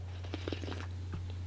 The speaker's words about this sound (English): Hold on, I'm going to have a sip of coffee.